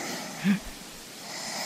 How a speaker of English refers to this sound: That is actually … snoring